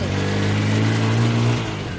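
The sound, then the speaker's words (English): A motorbike taxi engine revs in Caracas, a loud, buzzing drone whose pitch climbs slightly midway and holds steady for about two seconds. “A motorbike taxi driver took me up to one of Caracas's most notorious neighbourhoods.”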